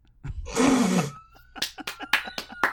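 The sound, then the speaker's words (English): A loud, rough roaring burst lasts under a second, then about ten sharp hand claps follow in a loose, uneven rhythm, with no talking. “thanks for the claps.”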